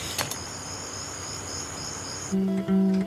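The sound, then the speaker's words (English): Cicadas buzz in a steady, high-pitched drone that fills the background, then a louder, lower buzzing tone cuts in near the end. No one speaks. “Love those cicadas.”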